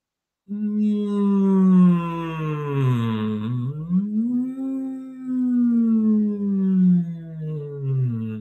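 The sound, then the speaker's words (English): A steady, resonant hummed voice sustains a low pitch for about eight seconds, dipping down and sliding back up in a smooth curve before settling, with no words spoken. “And then all you're going to do is do a nice, gentle, resonant hum.”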